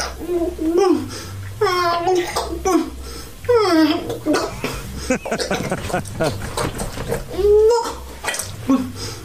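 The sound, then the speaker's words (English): A man gags and chokes in strained, high-pitched bursts that warble like a crying baby doll, repeated several times over a low steady hum. “That's him gagging on Gog. Sounds like a baby doll or a crying dog or something.”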